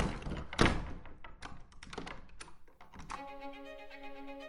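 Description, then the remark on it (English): A key is softly inserted into the lock of a hall door: one dull thunk, then a run of small clicks and scrapes, ending in a sustained tonal creak. “We all could hear a key softly inserted in the lock of the hall door.”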